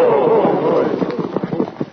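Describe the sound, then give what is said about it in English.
Horses gallop off with a quick, uneven drumming of hoofbeats that grows more distinct toward the end, following a brief drawn-out tonal cry at the start. “Sergeant, I'd say there wasn't a horse in the whole troop that could travel like them.”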